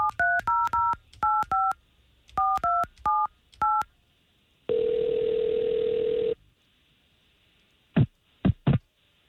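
A quick series of touch-tone beeps as a phone number is punched in, then a steady tone lasting about two seconds, followed by a few short clicks near the end. No one speaks.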